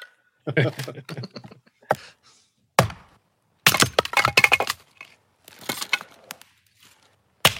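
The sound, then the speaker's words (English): Wood being chopped with an axe: several sharp, loud thwacks at irregular intervals, some followed by a rough splintering crackle, with short quiet gaps between blows. “Gonna chop some wood.”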